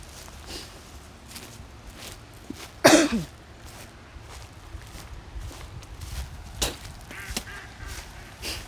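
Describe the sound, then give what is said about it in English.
Ducks squabble and fight each other, with one loud, harsh burst of quacking partway through and scattered scuffling, flapping noises before and after against a low outdoor background. “The ducks are currently going to literally fight each other.”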